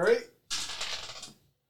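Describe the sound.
A brief voice gives way to a bright clatter of three dice tumbling and rattling across a hard tabletop for about a second before stopping, landing on a 6, a 3 and a 3.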